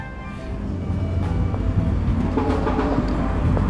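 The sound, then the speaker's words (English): A train rumbles steadily and loudly at the railway station in Delft, with a continuous low roar and faint metallic squealing, and no one speaking. “I'm in Delft and I'm behind the railway station and I'm on my way to a mini jazz festival.”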